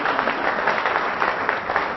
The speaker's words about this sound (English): Isn't that good? Yes, give her a clap.